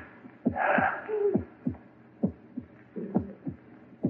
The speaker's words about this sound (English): That noise. Hear it? Your heart beating, pounding, driving the blood through your veins. Beating more slowly now, slower and fainter, running down like a tired clock.